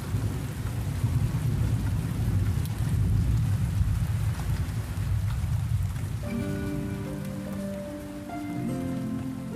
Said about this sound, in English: Overhead, the storm finally breaks. And rain douses the fires of Arim.